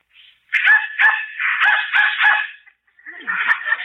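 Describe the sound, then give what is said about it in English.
A dog barks in response to a dog whistle in a quick run of five or six high-pitched yaps, pauses briefly, then lets out a longer, wavering yelp, with no one talking. “Dog heard it, but I didn't.”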